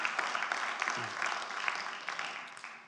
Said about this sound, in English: Let's give each other a round of applause. Come on.